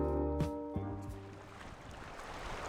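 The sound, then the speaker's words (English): Wind and waves wash against the pier at South Haven on the shore of Lake Michigan in a steady, soft rush, with a low droning tone fading out early and a couple of dull knocks near the start. “I'm on the pier at South Haven, which sits right on the shores of Lake Michigan.”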